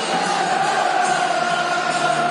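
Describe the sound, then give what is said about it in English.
A large crowd roars steadily with sustained cheering and applause, a dense, unbroken wash of noise that holds at the same level throughout, with no individual voices standing out. “Dear listeners, a round of applause.”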